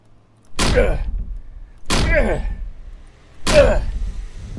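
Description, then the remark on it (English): Three heavy, booming thuds as a person rams a door with their body, spaced about a second and a half apart, each a loud impact with a short rattling decay and no voices. “I suddenly felt embodied by a superhero and decided to ram the door.”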